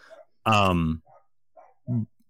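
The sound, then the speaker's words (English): The speaker's own dogs barking: one loud, drawn-out bark followed by a quieter pause and then a shorter, sharper bark, with faint background murmur in between. “Hear my dogs.”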